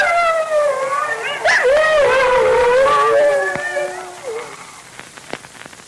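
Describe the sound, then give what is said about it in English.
A pack of wolves, gathering and closing in, howls together, several long wavering voices overlapping loudly, then trailing off into quieter scattered sounds with a few sharp taps near the end. “the wolves are closing in, and Marcuson and Junior are short of arrows”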